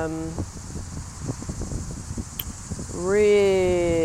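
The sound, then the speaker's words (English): A steady, high-pitched cicada buzz drones through the whole clip in New York on a windy day, beneath gusty wind rumble, while a voice sounds briefly at the start and again, louder, toward the end. “Can you hear the cicadas?”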